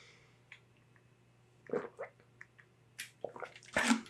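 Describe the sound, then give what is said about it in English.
A person takes quiet sips of water and swallows, with a few short wet slurps and a louder gulp near the end, over a faint steady hum with no speech. “I actually need to take a sip of water before I dive into this experience and the lessons that I had as a result of it.”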